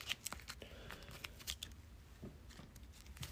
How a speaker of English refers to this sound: Boo! I hate shuffling stuff back into the encounter deck. Makes me sad. All right, those four go in. That's all I got left for that. And then I gotta shuffle them in.